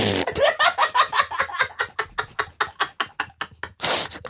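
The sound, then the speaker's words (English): Someone imitates a fart with their mouth, blowing a long, sputtering raspberry of rapid buzzy pulses, then finishing with a short, breathy blast. “You can just do a fart sound. I will.”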